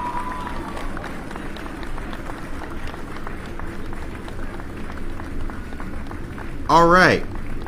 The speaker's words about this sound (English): Oh, hold on. Let me get the claps. Let's do the clapping. Right on.